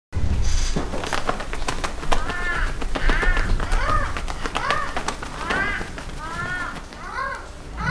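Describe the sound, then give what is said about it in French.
Gloves are shaken in quick bursts to imitate the sound of birds' flapping wings, with steady crow-like caws repeating over the fluttering. No one speaks. “Pour faire le bruit des oiseaux, on prenait des gants et on les... secouer.”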